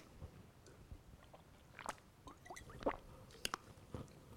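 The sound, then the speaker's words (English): Someone takes a little sip of water: soft wet slurps and a few sharp mouth clicks and swallows, quiet and irregular, with no talking. “Oh my gosh, I'm going to take a little sip of water.”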